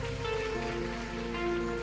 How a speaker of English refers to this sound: Thank you. Oh, put your hands together for them.